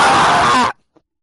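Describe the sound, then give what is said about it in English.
A single loud, raw scream into a microphone, lasting under a second, harsh and strained, then cutting off abruptly into silence with one faint tick afterward. “Just screamed into the microphone. That's gonna be loud.”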